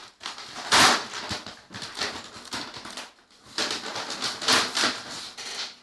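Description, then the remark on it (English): Wrapping paper on a present being torn open, crackling and ripping in two long bursts with a brief pause between them, bright and noisy with no voices. “Okay, I like this paper. You don't. You can rip it.”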